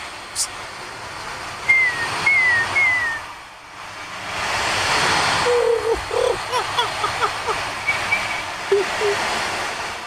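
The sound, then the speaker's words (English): An ocean drum, an instrument that looks like a tambourine, swishes with a steady surf-like hiss that fades briefly, then swells back up. Short, chirpy whistled tones sound over the rushing wash. “This is called the ocean drum.”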